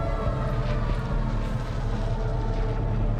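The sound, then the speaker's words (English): A steady, heavy drone of the large propeller engines of a wave of about 60 enemy bombers headed for the fortified harbour of Gibraltar, deep and throbbing with a constant roar, holding at a fairly loud level throughout with no voices. “The Gibraltar Defence Force run to assume their positions and await the coming attack, as the drone of the bombers' engines become ever louder.”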